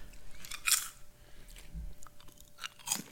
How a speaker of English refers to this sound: That's a good crunch.